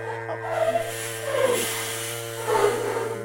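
A young man hums a steady, buzzing tune with no words, the pitch shifting slightly and swelling louder in three brief rises over a few seconds.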